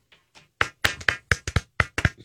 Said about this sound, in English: Is there a rhythm you want? Or no, just applause.